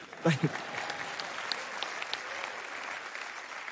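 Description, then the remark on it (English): An audience claps steadily for several seconds, a dense, even patter of many hands, with a brief voice rising above it at the very start. “Y'all can clap for that.”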